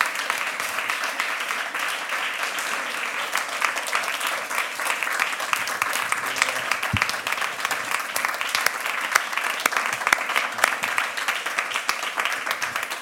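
A crowd applauds steadily for over ten seconds, a dense, even wash of many hands clapping at a fairly loud level, with no voices standing out.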